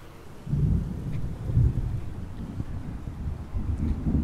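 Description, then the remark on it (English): Low, rolling thunder rumbles overhead during a thunderstorm, swelling and fading in long waves over a steady background of wind and light rain, with no voices present. “Meanwhile, above me, the gods are angry. They're throwing things at each other. It's a good thunderstorm.”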